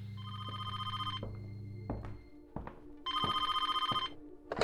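An old-fashioned telephone at the Bevis Funeral Home rings with a call for an ambulance, in two loud, buzzy bursts separated by a pause, with a few clicks and thumps in between and no voices.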